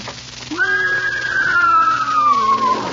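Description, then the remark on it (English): A single drawn-out whinny from a horse named Leona, brought into a studio at NBC, fairly loud, sliding slowly downward in pitch over about two seconds, with a faint hum beneath and no talking. “I don't want a horse in this studio.”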